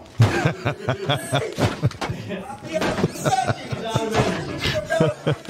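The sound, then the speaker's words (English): People try to force a locked door, battering it with repeated heavy bangs and thuds in an irregular flurry, while voices chatter and chuckle underneath. “Man, they're really trying that door.”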